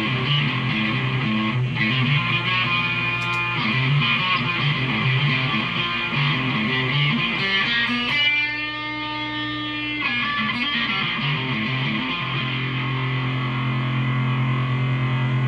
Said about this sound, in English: So far, what a difference. When I turn that up, I know we're getting a lot of buzz, but you ought to hear that gain.